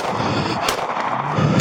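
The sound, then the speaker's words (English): Two sharp gunshots, recorded on police bodycam footage as officers return gunfire during a chase of carjacking suspects, crack out about a second apart over a loud, rumbling background, both forceful with no voices in between. “Officers returned gunfire,”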